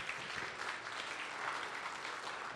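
Steady audience applause for a family fills the whole stretch, a dense crackle of many hands clapping at an even, sustained level with no voices standing out above it.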